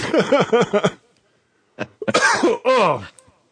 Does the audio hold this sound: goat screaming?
no